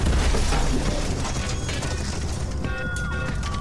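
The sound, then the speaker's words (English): A loud, sustained crash as a vehicle called the Ruby smashes through a garage door, with splintering wood and rumbling impact noise, followed by scraping and rattling debris settling. No voices. “The Ruby blasted through the door to the garage.”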